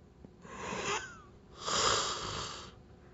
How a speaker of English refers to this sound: I just need a yawn. I've been holding that yawn in, and it's been annoying. I'm not even tired. That's the funny thing about it. Anyway, sorry about that.